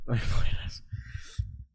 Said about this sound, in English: Why blow my nose?